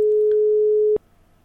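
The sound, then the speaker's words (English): A telephone line tone after a hang-up: one steady, mid-pitched electronic beep lasting about a second, clicking on and off abruptly, followed by faint line hiss. No voices. “Oh, she hung up.”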